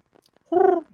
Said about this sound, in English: What is that? Fucking pigeon. Oh, my God.